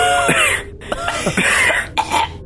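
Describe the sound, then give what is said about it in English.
A fit of harsh coughing from heavy dust stirred into the air by opening a door: several rough bursts in quick succession with brief catches of breath between them, loud and with no talking. “The door opens up to a small coat room, and you cough from the heavy dust that stirs into the air as soon as you open the door.”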